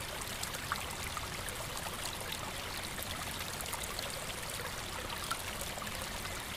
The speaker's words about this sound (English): Continuing down the hill, you catch the sounds of rushing water. It seems as though there is a raging torrent, white water, somewhere not too far off.